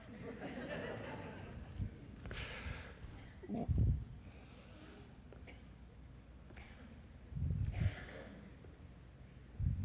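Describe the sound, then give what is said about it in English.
A person coughs in a couple of short, rough bursts separated by several seconds, with quieter breathy, throaty sounds in between. “God's resting on you right now and you're coughing.”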